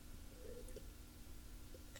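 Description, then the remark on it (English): Someone takes a quick sip of water: a soft, brief gulping swallow with a faint click, set against a low steady hum and no talking. “I had to get a sip of aqua first.”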